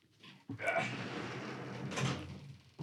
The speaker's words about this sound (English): Yeah, we're recording in a shed. And yeah, you know what I'm saying? I done soundproofed it, but the police, you know, they still be knocking on the door from time to time, so you got to make sure the door's closed.